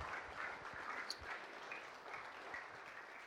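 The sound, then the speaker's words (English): A crowd claps steadily and cheers for a man, the dense applause carrying a few scattered whoops rising above it, no speech over the top. “Give him a cheer, everyone.”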